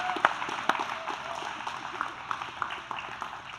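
An audience applauds to welcome freshmen and their parents: a steady, dense patter of many hands clapping at once, with a few sharper claps standing out near the start. Moderately loud, with no speech over it.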